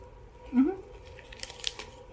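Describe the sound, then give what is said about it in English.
A short, brief voice sound is followed by a few sharp, crinkly bursts of a Crunch chocolate bar wrapper being torn open, moderately quiet and irregular, clustered near the end. “Oh, it's a crunch bar.”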